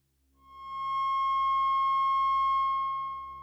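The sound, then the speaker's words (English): A steady, pure sine tone around C sharp swells in smoothly, then holds loud and unwavering for a few seconds with a faint low hum beneath it. “Finally, the octagon, where we get 1080, another C sharp.”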